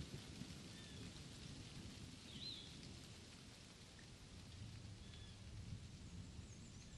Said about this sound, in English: The rain fades out, and the thunder becomes more distant as every second passes.